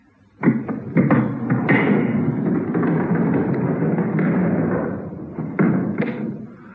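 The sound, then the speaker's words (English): A heavy door to the factory wing of a prison is pushed open with a loud thud and a long, rumbling scrape, then swings shut with another solid bang, with no voices. “This is the door to the factory wing.”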